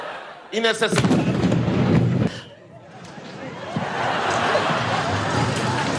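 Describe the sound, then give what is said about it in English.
A loud explosion booms out over crowd noise and voices during a military parade, roaring for about two seconds before cutting off, leaving a steady murmur of a large outdoor crowd. “But did you see how they reacted when the explosion goes off?”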